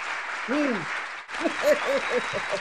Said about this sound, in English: What was that? I want you to clap that again one more time.